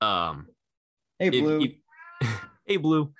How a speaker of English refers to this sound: and I apologize, the cat has woken up.